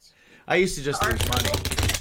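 A short vocal sound gives way to a fast, crisp burst of fluttering clicks lasting about a second, like a deck of cards being riffled together.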